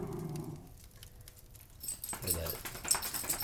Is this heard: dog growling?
yes